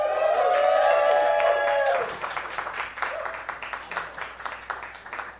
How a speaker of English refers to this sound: It says here, hold for applause, shame them if they do not. So good job. Shame-free crowd.